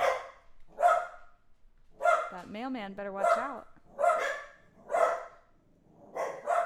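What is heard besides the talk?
dogs barking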